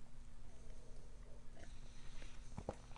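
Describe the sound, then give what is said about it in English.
Someone sips tea, making a few soft, short slurping sounds toward the end, with nobody talking. “Sip of tea.”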